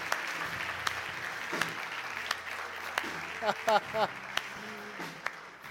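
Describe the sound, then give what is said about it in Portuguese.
A church audience applauds the Lord steadily, a dense wash of clapping with a few sharper individual claps standing out, while voices call out faintly underneath. “Toda a igreja aplauda ao Senhor, que Ele merece.”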